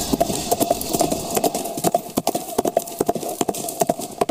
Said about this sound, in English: We can't keep up with you, bud. Come back, please! I can't keep up with you. Fucking horse, look at that.